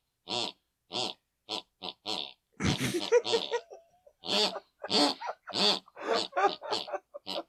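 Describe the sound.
Loud snoring of a woman asleep in bed, made of short, grunting snorts, pig-like, repeating in a quick steady rhythm, then turning into a rougher, more jumbled run of snorts and rasps. No talking.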